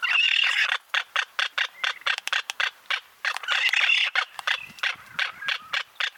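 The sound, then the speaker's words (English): A noisy magnificent frigatebird breeding colony: a dense chorus of harsh squawks fills the air while bursts of sharp, rapid bill snapping clatter through it, loud, with no voices. “They'll be all together in their colony, making squawking calls and snapping their bills, really making a ruckus.”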